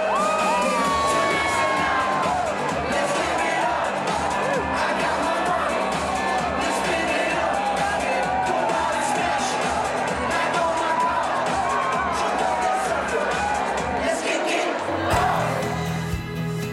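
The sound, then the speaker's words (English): A large, lively crowd cheers and shouts continuously at a neighborhood Bastille Day party put on by the local fire department, with whoops and children's high voices rising out of a dense wall of chatter, loud throughout before shifting briefly near the end. “The local fire department's putting on this party, so I guess it doesn't matter if the fire marshal drops by.”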